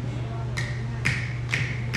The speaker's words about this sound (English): Thank you for one clap.